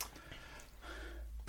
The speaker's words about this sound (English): What's that noise? It's clearing my throat. Sorry.